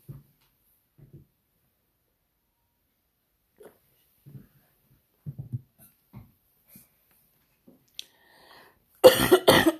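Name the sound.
coughing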